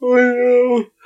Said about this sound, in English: Got caught mid-yawn.